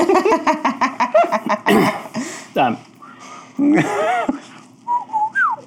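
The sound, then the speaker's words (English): A voice imitates a warning chirp with a rapid string of short, clipped vocal pulses, then raspy squawk-like bursts, ending in a few high, rising whistled chirps. “It definitely seems like a warning chirp.”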